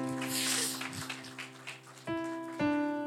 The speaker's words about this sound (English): Let's clap our hands and take our seats.